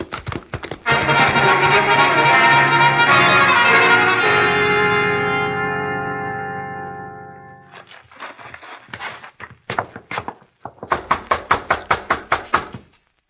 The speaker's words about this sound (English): Nobody answers, Hoppy. You figure this is the right place? Yeah. Wade Benson's name is on the gate. Knock again.